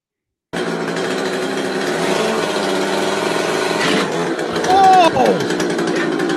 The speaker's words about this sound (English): for those that aren't, that are just listening, he's got the chainsaw, and I don't know what he's doing.